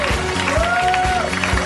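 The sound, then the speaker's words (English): An audience at a Harmontown show claps continuously in a dense, steady wash of applause, with crowd noise mixed in and a thin whistle-like tone gliding upward and holding briefly partway through. “We keep clapping!”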